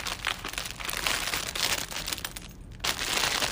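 A plastic mystery bag of candy goodies crinkles and rustles continuously, a dense papery crackle with brief pauses, as the bag is held open. No one speaks.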